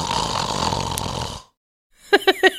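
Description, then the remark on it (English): An animal snores: one long, raspy, rumbling breath, a brief silence, then a quick run of short squeaky, nasal snorts. “He's just snoring.”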